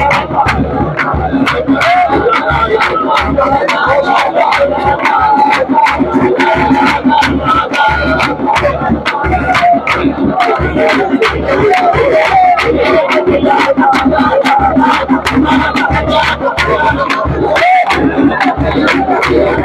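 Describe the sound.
A large audience claps steadily while many voices pray aloud at once, a loud, continuous wall of overlapping speech and rhythmic hand claps.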